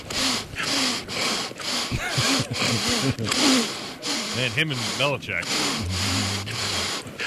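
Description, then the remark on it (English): Former President Trump sniffles repeatedly, short sharp nasal intakes recurring about every half second, woven between and over his continuous talking. “Just while we're there, here's former President Trump sniffling.”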